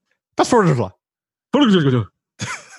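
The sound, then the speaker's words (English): Three sneezes in a row, each a loud voiced burst with a falling pitch, the last one shorter and breathier, separated by brief silences. “I think I just sneezed.”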